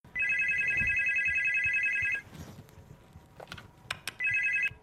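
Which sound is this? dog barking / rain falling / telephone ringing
telephone ringing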